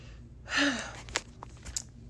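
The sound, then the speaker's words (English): A single strained, gasping intake of breath, followed by a few faint mouth clicks and shallow breaths. No one speaks. “But, oh my gosh, I'm having breathing problems so bad.”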